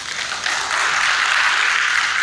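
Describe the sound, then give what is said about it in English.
Steady, dense crackle of many hands clapping together, a sustained burst of crowd applause for Tom Magazine at moderate loudness with no voices over it. “So clap it up for Tom Magazine, if y'all don't mind.”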